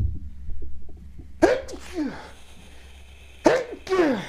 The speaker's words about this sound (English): Bless you, Jesus.